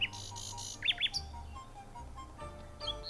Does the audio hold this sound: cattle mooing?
no